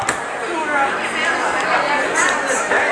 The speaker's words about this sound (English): You can probably hear the crowd noise going. A lot of it is cell phones.